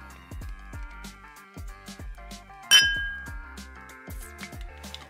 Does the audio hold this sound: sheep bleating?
no